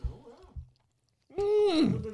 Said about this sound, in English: We just all took a bite. I'm just going to finish chewing before I continue. Hold on.